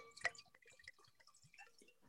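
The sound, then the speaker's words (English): Moonshine being poured into a mason jar: a sharp glassy clink at the start, then irregular trickling splashes and drips, fairly quiet, with no voices. “That was a Texas pour.”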